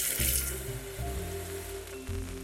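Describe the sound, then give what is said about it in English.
Running tap water splashes steadily into a bowl in a kitchen as about 8 ounces of beans are rinsed and covered with about 4 inches of water for soaking; a continuous hissing rush with shifting tonal hums as the vessel fills, no voices present. “I will give them a quick rinse and then I will cover them with about 4 inches of water.”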